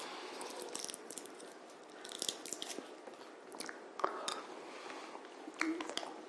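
Someone puts a cough drop in their mouth, with soft crinkly rustles, wet clicks and faint sucking sounds scattered irregularly over several seconds, no speech.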